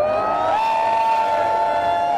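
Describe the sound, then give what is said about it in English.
An audience cheers and whoops on request while being filmed on a phone, a steady, loud roar of voices that holds for a couple of seconds, with a high sustained cry rising in pitch just after the start. “I want you all to wave and cheer and make it look as raucous as possible.”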